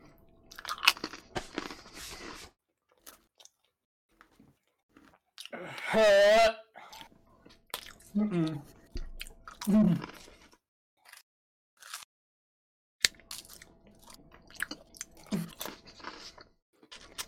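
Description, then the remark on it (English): Wet chewing and crunching of food in irregular bursts, broken by loud strained groans and gagging-like vocal noises, with quiet pauses between mouthfuls. “I can't swallow it.”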